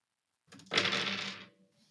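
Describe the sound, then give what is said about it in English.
Dice rattle and clatter across a hard tabletop in one quick roll lasting about a second, fairly loud, then settle into quiet; six eight-sided dice rolled for radiant damage in a tabletop game, totalling 18 damage. No one speaks. “Oh, it's a terrible roll.”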